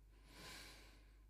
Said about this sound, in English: I think, the meditation helps so much with this. Breathing in through my nose and out through my mouth.